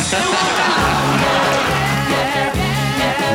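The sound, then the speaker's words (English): A dense, loud wall of crowd noise at an artist's concert runs throughout, with whoops and shouts rising out of a steady roar and some sustained tonal sounds mixed in. “…'s funny at the beginning of this when he tries to quiet the crowd down.”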